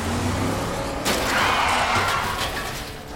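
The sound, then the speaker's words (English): Cars roar through a road chase as pursuers try to knock a car off the road: a dense, steady rush of engine and tire noise, broken about a third of the way in by a sudden loud crunching impact that rumbles on. “They're trying to knock us off the road!”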